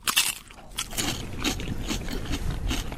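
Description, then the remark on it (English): A loud crisp crunch as a bite is taken into crispy fish and chips, followed by a steady run of crackly chewing with repeated bursts of crunching over about three seconds, no talking. “Let's take a little bite together.”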